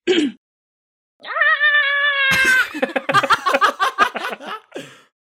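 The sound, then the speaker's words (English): A person imitates the tiny scream of the rat character Ratness as it is flung out a window and falls to the ground: a brief yelp, then a sustained, shrill, wavering squeal, dissolving into choppy bursts of laughter. “give me a tiny rat scream.”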